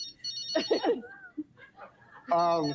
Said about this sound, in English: Oh, well, the phone is ringing. I certainly hope that somebody calling to tell you to go home. Oh, no. You got a phone ringing.